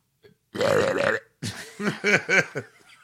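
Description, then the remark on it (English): A person does a loud, drawn-out vocal impression of a character's burp, followed by a series of quick, rhythmic croaking belch sounds. “You're being weird with your noises tonight. Well, that's Barney. You ever notice when he burps?”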